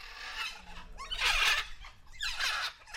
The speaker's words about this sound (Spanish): las emblemáticas guacamayas rojas, las cuales pueden hablar su propio idioma, a gritos.